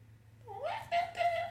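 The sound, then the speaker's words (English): A cat meows: one drawn-out rising call, then two shorter mews in quick succession, fairly faint, over a low, steady background hum. “Is that thing talking to us? That'd be a cat.”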